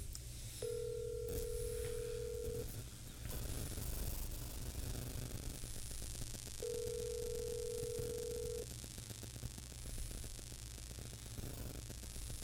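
A telephone rings twice, each steady two-second tone separated by a long pause, over a constant hiss and low hum with no voices.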